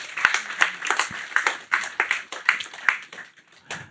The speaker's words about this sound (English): So let's just give a round of applause to the Lord for what he did. Amen.